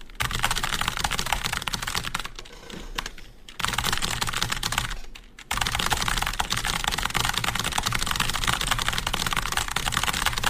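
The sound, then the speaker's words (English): Extremely rapid, dense clatter of computer keyboard keys, typing at about 300 words per minute on a 15-second typing test, loud, continuing almost without gaps apart from two brief pauses, with no voices. “That legit just sounds like you're just pressing a bunch of keys”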